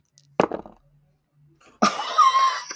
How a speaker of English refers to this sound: Give me an intelligence roll. I get to roll my new dice for real. You guys want to hear how they sound? They sound like jingle bells.